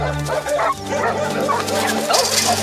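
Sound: dog barking and yipping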